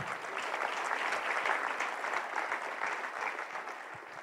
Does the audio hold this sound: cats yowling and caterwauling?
no